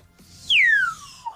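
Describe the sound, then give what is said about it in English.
A small Costa Rican whistle is blown once: a loud, high tone that slides steadily downward in pitch for under a second, ending with a brief little chirp, with no talking. “It's a Costa Rican whistle.”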